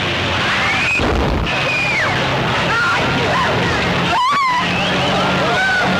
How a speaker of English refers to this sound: Trying to avert a collision, Shorty Cantlin swerves sharply and his car goes out of control. Look out!